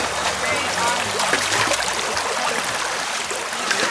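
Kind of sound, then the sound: nature, creek water running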